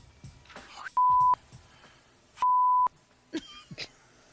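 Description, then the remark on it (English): Two steady, loud electronic beeps of the same pitch, each about half a second long with a pause between, as a phone line hangs up on a TV control room, over faint background noise and brief rustles. “He didn't realize his mic was still on because his phone hung up on the control room.”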